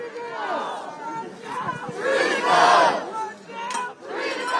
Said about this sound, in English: Hundreds of protesters gathered at George Floyd Square. There were screams of excitement and tears of joy among the protesters.